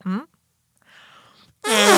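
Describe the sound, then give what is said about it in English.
A breathy, airy hand fart made with a cupped palm, lasting about half a second, fairly quiet, set between two short voiced vocal sounds, the second one louder. “That hand farts are cool.”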